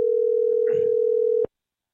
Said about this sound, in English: So you're going to hear, we're going to call Buster only right now. You'll hear the dial tone. And if he doesn't pick up, we'll leave him a message.